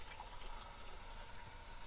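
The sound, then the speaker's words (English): Water coming to a boil, a steady, quiet rushing hiss with a soft bubbling texture that holds evenly throughout, with no voices. “How's my water doing? It's almost there.”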